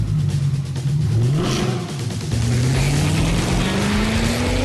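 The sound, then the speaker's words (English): A Mercedes-AMG GT four-door coupe engine revs hard, its pitch climbing, dropping briefly as the gear shifts, then rising steadily again in a loud, continuous roar with no voices. “The GT four-door coupe from Mercedes-AMG. Because life is a race.”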